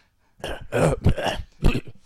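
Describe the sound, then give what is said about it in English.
A person coughs and clears their throat in a quick series of rough, harsh bursts, fairly loud, with no talking around it. “But also sometimes it fucks up and you do get things in your trachea and you have to cough it out.”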